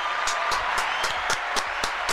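Hands clap in a steady, quick rhythm, about eight sharp claps in two seconds, fairly loud over a constant hissing wash of background noise.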